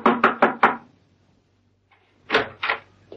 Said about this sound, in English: he approached a door which read, "The QQF Inc. Knock and enter." Steed did so.